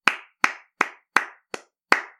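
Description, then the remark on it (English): Six sharp hand claps from prisoners in a jail, in a steady, slightly uneven rhythm, each a crisp bright smack with a short decay, with silence between them and no voices. “The other dudes, all the other prisoners are clapping for him.”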